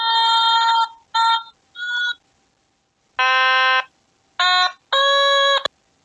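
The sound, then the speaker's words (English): An otamatone toy, whose pitch changes as you go up its fret and which has high, medium and low settings, sounds six buzzy, nasal electronic notes in short bursts, some wavering in pitch, with brief silences between them and no talking. “Well, that is enough tomatone for now.”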